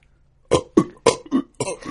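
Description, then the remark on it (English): A voice imitates a sound halfway between a belch and a hiccup: five abrupt, throaty bursts in quick, uneven succession, fairly loud, with no talking. “And he did this bizarre thing that I can't even replicate or describe, but it was halfway between a belch and a hiccup, and it was just all...”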